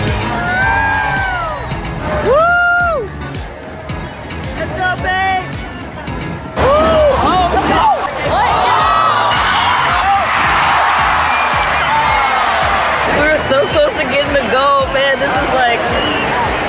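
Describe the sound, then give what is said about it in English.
A loud crowd at a sports game shouts and cheers continuously, with individual whoops and long rising yells cutting through a dense roar of many voices that swells louder partway through. “All right, let's head into the game and start shouting.”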